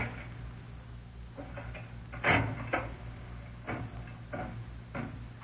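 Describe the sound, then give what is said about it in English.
A slot machine lever in a back room is pulled with a loud clunk, followed by a low mechanical whir and a series of sharp clicks as the reels spin and stop one after another, with no voices. “He's out in the back room now playing the slot machine.”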